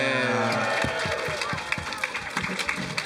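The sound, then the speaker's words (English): Thin, half-hearted applause from the audience of a live-streamed Sunday panel, with a few scattered claps and some light cheering over a steady crowd murmur; the clapping is sparse and uneven rather than a full ovation. “That's barely applause.”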